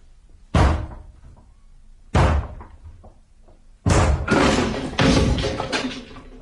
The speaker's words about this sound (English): The door's locked. Ackroyd! Ackroyd! It's Shepherd! Let me in! Look here, Parker. I'm going to break the door down. Or rather, we are.